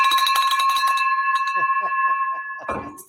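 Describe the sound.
A bright celebration bell is struck rapidly several times, then its clear ringing tone hangs on and slowly fades while a voice talks over it, ending with a short clatter.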